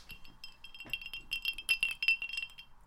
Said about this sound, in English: It's a glass of Coke. Ah, Coke.